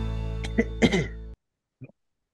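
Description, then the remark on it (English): A person clears their throat with a few rough, raspy bursts that build to a heavier rumble, then cut off abruptly, followed by a brief faint sound after a pause. “I'm clearing my throat.”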